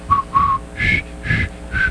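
A person whistles a short tune up close: two lower notes, then three higher held notes, evenly spaced and clear, with no talking.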